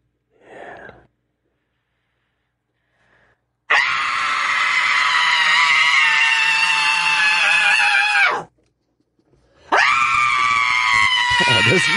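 A person lets out a long, sustained scream lasting several seconds, loud, preceded by a short breathy sound and followed by the start of another scream after a brief pause.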